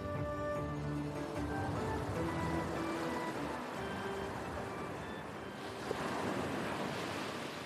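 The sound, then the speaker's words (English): Ocean waves wash steadily onto a small beach in a continuous, fairly loud roar of surf, with one surge building and breaking near the end. Faint musical tones sit underneath. “They are all on a small beach. In front of them, a blue expanse as far as the eye can see. The ocean.”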